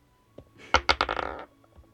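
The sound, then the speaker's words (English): Dice clatter across a hard tabletop: a few sharp knocks followed by a quick rattling tumble that dies away within about a second, with no voices. “I'm going to roll this.”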